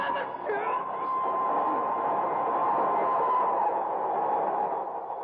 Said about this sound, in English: I can hear a train approaching